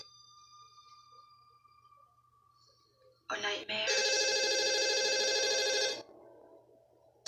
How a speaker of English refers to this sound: Why don't you answer your phone